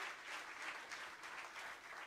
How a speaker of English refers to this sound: Why don't you give the Lord a hand clap of praise tonight? Amen.